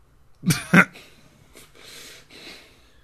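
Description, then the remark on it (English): Two sharp, bright clinks land in quick succession as glass is dropped onto a keyboard, followed by a few softer rattling scrapes that fade out. Fairly loud, with no talking. “Dead man, stop dropping glass on the keyboard.”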